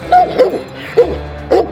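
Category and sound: animal, dog barking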